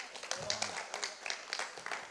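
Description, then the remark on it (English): A crowd applauds the speaker's father, with a steady patter of many hands clapping at a moderate level for about two seconds and a faint murmur of voices underneath. “Round of applause for my dad.”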